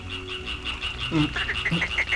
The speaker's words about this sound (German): Was ist das? Hört ihr das? Das sind Frösche. Sie geben ein Froschkonzert. Klingt unheimlich.